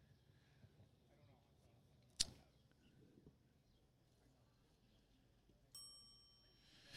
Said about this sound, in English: And there's the bell. The bell signifies a pitch being thrown because I can't call balls and strikes.